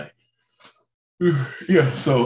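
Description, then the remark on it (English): A loud, drawn-out yawn, voiced and wavering in pitch over about a second, after a brief quiet pause with a faint breath. “For starters, you're not going to start yawning on the podcast because you ain't going to make me start yawning because that's how it starts.”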